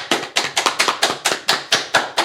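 A short round of applause: roughly a dozen sharp, crisp hand claps at a quick, fairly steady pace, loud and on their own with no talking.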